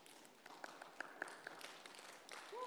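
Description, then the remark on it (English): An in-person audience at Bread claps for itself in a dense, steady round of applause, with a few short, high whistle-like tones and a brief rising cheer near the end. “So why don't you give yourselves a round of applause.”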